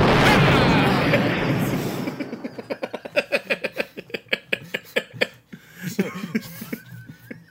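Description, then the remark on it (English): A loud explosion sound effect roars and rumbles away over about two seconds, followed by bursts of rhythmic laughter. “I've just received word that the explosion sound effect was running a little late, so it'll be here later in the program.”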